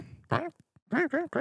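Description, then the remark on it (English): A person imitates a duck, giving one nasal quack followed after a brief pause by three quick quacks in a row, fairly loud with no talking. “Why is that like kind of a good impression of a duck?”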